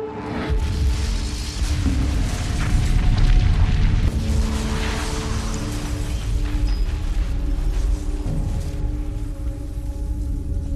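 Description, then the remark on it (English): A massive explosion's blast and shockwave roll on as a loud, continuous low roar and rumble, swelling slightly midway and holding steady for about ten seconds with no voices. “After the blast, it is likely the city would burn for many days.”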